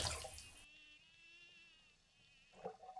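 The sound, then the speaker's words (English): Bathwater in a bathtub sloshes and splashes loudly for a moment as a woman dunks her head under the water, then gives way to a muffled, humming underwater stillness before a brief burble of water stirs again near the end. “After a while, she began to relax, and she took a moment to dunk her head under the water and let the outside world fall away.”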